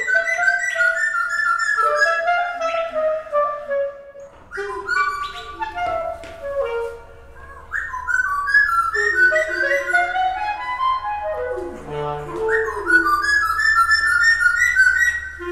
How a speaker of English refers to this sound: One little guy, brown feathers, dark beak. And at that moment... anyone would say, No, they're like doing call and response. Yeah. This is interesting. Something's happening here. This bird and this clarinetist are doing something together.